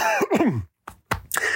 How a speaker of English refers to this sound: I'll try to pause from now on so you don't get that coughing in your ear.